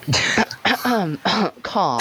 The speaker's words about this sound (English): Cough.